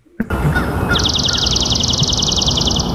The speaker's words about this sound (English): No, in this case, this was swamp sparrow. Swamp sparrow. You see, yeah. This is why they're complicated. Yeah. It's very staccato, this one, and it was in a marshy area.